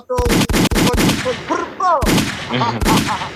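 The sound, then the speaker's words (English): A rapid burst of loud gunshot sound effects, several sharp cracks in quick succession with echoing tails, punctuated by a few more blasts, forceful. “Yo, can I throw some gunshots in there for you, fam, before you continue?”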